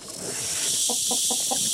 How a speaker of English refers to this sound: A cockroach that makes a great pet is one from Madagascar called the Madagascar hissing cockroach. They hiss when they breathe.